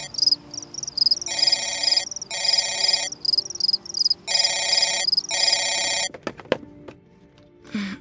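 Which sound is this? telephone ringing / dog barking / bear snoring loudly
telephone ringing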